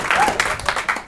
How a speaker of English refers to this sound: Are you upset? Oh. This is the same thing, though. Less people, stronger claps. I know it. I can hear it. Those are sweaty claps. Yeah. That's like somebody's going to throw their shoulder out doing it, like trying to get the volume up.